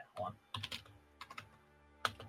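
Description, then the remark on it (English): Someone types on a computer keyboard in short, uneven bursts of clicky keystrokes, fairly soft, with brief pauses between flurries and no one speaking. “He's typing.”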